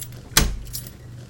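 A sharp metallic clink followed by a lighter, brief jingle of lock picking tools rattling inside the lock of a wooden door in the rain, over a low steady hum with no voices.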